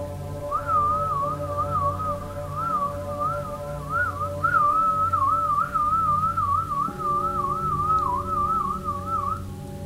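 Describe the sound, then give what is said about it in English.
A person whistles a sustained, warbling whistle, meant to sound creepy in several different tones, holding one wavering pitch for nearly ten seconds over a low, steady droning hum that shifts tone partway through. No one speaks. “like if this were a movie, I want the whistling to be something like sustained.”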